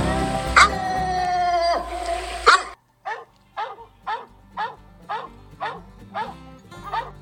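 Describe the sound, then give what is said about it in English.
A female coonhound named Whitted barks at a treed raccoon above her, first with long drawn-out bawling howls, then a steady, evenly spaced series of loud chop barks repeating about every half second. “That steady mouth tree dog you hear there is the sound that we all long to hear with a raccoon above her.”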